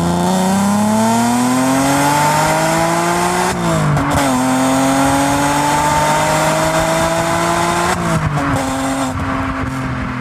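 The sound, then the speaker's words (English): An Alfa Romeo Busso V6 engine, developed in the early 1970s, revs hard and accelerates, its pitch climbing steadily, dropping briefly at two gear changes, then rising again. Loud and continuous, with no voices. “It was it's been classified as the most glorious sounding V6 engine ever produced by Evo magazine, and it's really, the soul of a Ferrari, but for the masses.”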